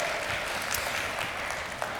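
A crowd applauds steadily as a guest is welcomed to the stage, many hands clapping together in a dense, continuous wash of sound with no pauses, holding an even loudness throughout.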